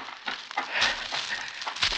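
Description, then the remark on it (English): A pack of bloodhounds bays in a continuous, overlapping chorus, the rough howls blending into a noisy wash at moderate volume with no one speaking. “He had a chance against a pack of bloodhounds if he started right away.”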